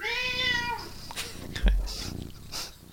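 A cat gives one clear, drawn-out meow, its pitch sliding downward, followed by soft rustling, a dull thump and faint murmuring.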